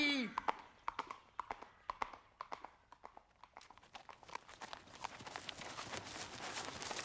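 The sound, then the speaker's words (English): Horse hooves clip-clop in a steady rhythm as the animal is ridden, the beats growing quicker and denser toward the end, with a brief vocal sound at the start. “Giddy up. Nice and easy. Hold on, horse. Hold on.”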